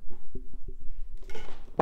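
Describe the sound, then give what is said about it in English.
A fart blown right into the microphone: a low, buzzy, sputtering burst with several quick pulses, fairly loud, followed by a rougher rustling blast of noise at the end. “I have to fart. I'm going to do it to the mic, see if it registers.”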